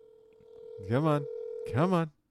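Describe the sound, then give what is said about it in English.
A steady, continuous ringback tone of an outgoing call to a mobile phone hums through the whole clip, while a man's voice speaks over it twice, briefly and fairly loudly, urging the other person to pick up, before it cuts off. The call goes unanswered. “Pick up, boy. Pick the phone up, boy.”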